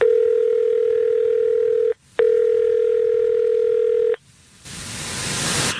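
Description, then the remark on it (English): A loud, steady electronic telephone tone plays in two long stretches separated by a brief gap as a phone call is placed, then cuts out into a rising burst of line hiss. No one speaks. “So let's call her, and we'll see if we can get her on the phone and ask these questions.”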